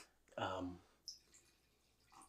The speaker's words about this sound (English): Can I pour you up, pal? Yeah, pour, please.